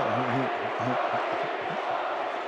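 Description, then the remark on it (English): A loud arena crowd at a Jazz basketball game chants "Bogey" for player Bojan Bogdanovic in a steady rhythmic cadence, voices blending into a dense roar with repeated low syllables rising and falling throughout. “Crowd still chanting Bogey.”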